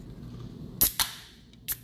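A caffeine drink can being cracked open, not opening all the way and spraying drink over the opener's hands: a sharp metallic click and a brief fizzy burst, then another snap a moment later, over a low background hum with no talking.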